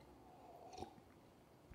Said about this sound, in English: A sip of coffee, if you will.